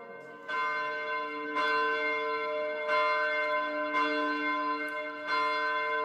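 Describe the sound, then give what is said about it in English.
A church bell tolls steadily, about five strong strikes roughly a second apart, each ringing out with a rich, lingering hum that overlaps the next. It is rung to celebrate the church reopening after 49 days closed. No voices, just the bell, loud. “I think we need to ring the bell 49 times today to celebrate that we're back in church.”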